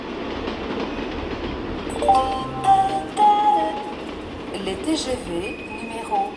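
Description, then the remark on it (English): A busy mainline railway station in France in August, as Paris empties out, with the steady rumble of trains including high-speed TGVs, brief metallic wheel and brake squeals rising over the noise, and an indistinct murmur of voices in the background. “August in France, when Paris empties out, brings an annual ritual to the country's mainline railway stations.”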